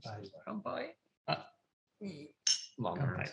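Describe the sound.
Glasses clink together in a quick, bright toast during a shochu tasting, a short sharp ring amid several bursts of voices talking and murmuring.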